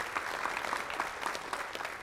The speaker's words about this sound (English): Would you give him a hand clap of praise and thank him this morning for his marvelous presence among us?